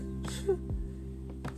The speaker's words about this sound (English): Oh, they gotta sneeze.